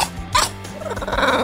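A dog vocalizes, giving a short sharp bark followed by a rough, growly whine that trails off, with no one talking.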